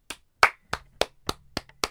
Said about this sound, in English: But if you didn't have that hot fudge sundae today and you had a salad, I clap for you.